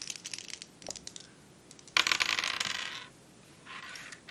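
Two dice, rolled for a presence check, clatter and tumble across a hard tabletop in a few quick bursts, with scattered clicks first, then a louder rattling roll, and a softer final tumble. Clear, with no talking.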